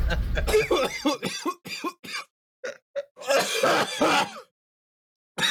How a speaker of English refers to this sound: Why do you cough the way you cough? A much older man. Like you're rejecting your lungs.